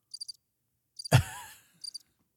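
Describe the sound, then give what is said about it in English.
Three short bursts of high, pulsing cricket chirps, evenly spaced, with a low, breathy sigh-like vocal sound swelling and fading between the second and third bursts. “What did you think of it, Paul? Oh, crickets.”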